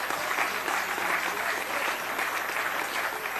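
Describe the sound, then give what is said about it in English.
Steady applause from a large audience in parliament, applauding the national women's football World Cup team, many hands clapping densely at a constant, fairly loud level throughout with no voices standing out. “The Women's Football World Cup, we applaud them.”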